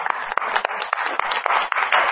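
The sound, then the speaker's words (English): An audience at Beloved Church applauds, many hands clapping together in a dense, steady wash of claps with a few sharper individual claps standing out, continuing without pause and with no voices over it. “And I want to just applaud you guys.”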